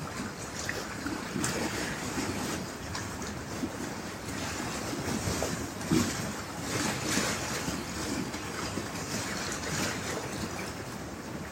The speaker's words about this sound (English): And the water is mesmerizing.